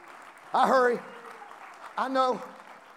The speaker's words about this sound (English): Oh, come on, clap your hands unto the Lord today.